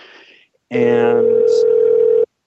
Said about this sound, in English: Uh-oh, somebody's ringing here.